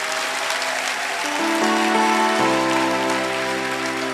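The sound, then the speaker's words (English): A church crowd claps for Jesus steadily in a dense, continuous wash of applause while sustained keyboard chords hold and shift underneath. Nobody speaks. “Clap for Jesus.”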